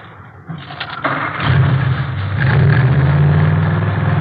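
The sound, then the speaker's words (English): A modified car engine with Mallory ignition, milled heads and twin Wakefields, about 120 horsepower, cranks briefly, catches with a burst, and settles into a loud, throaty, steady rumble with a deep low-pitched growl that holds to the end. “Here, let me start it up for you.”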